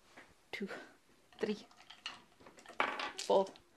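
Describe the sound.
Dice, including ten-sided dice, clatter and tumble across a hard surface in several short, sharp bursts of rattling as a damage roll is made in a tabletop game, with a louder jumble of clicks near the end and faint voices underneath.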